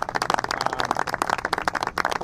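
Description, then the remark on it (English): A crowd breaks into sustained applause for the town's Community Preservation Committee, many hands clapping in a dense, irregular patter that stays steady and fairly loud throughout, with no voices standing out. “huge round of applause for the CPC committee.”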